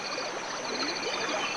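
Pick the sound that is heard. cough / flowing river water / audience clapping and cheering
flowing river water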